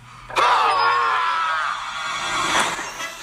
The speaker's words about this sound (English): Can we just put his scream in here?